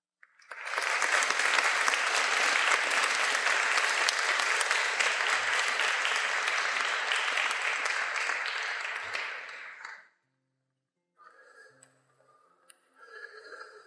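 A church audience applauds warmly as people come forward for the final prayer, a dense sustained roar of many hands clapping for about ten seconds before stopping abruptly, followed by faint voices.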